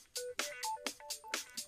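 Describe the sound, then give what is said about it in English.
A mobile phone rings with a quick, bright electronic melody of short tonal notes in rapid rhythm, clear, with no talking over it. “Oh, it's my phone ringing.”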